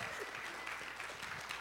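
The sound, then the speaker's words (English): A crowd of people clapping steadily to welcome a speaker up, a dense, even wash of applause that stays at a constant level throughout the short stretch. “So bring her up with a good round of applause.”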